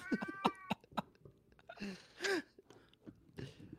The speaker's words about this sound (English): With the cat accompaniment, it's nice.